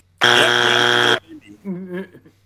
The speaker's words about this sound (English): Wow, you got a buzzer on that? Yeah, you did.